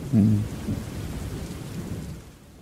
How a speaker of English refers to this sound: Let's just enjoy the rain really together. Really calm and nice in here.